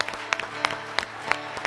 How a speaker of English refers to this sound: And now can we give the Lord the biggest hand clap of all, and let's bless him.